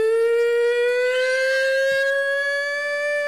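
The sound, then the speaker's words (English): A pig-calling contest holler: one long, loud, high-pitched voice held steady for over three seconds, gliding slightly upward, with a bright, siren-like tone and no other talking. “They have a contest where they call pigs. This is the contest. Who's the best pig caller?”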